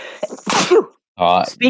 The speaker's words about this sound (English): Sorry, I'm about to sneeze in a minute.